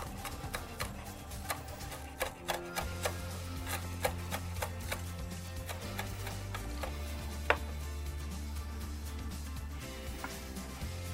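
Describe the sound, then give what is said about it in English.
Seaweed paper being cut to top a poke dish, heard as a run of short, crisp snips and clicks at an uneven rhythm, fairly quiet, over a steady low musical backdrop with no talking. “Just cut that up.”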